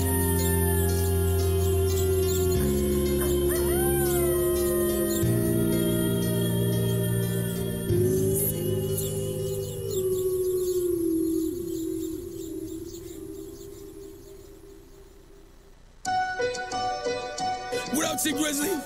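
A long, drawn-out wolf howl glides slowly downward over steady low droning tones and high insect-like chirping, ending abruptly as a busier burst of sound takes over near the end.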